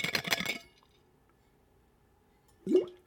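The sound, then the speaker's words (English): A short burst of sloshing liquid and bottle noise, a pause of quiet, then a single throaty swallowing gulp with a quick rising pitch, as someone takes a big gulp of tap water from an unbranded water bottle. “Yes, let me take a big gulp here.”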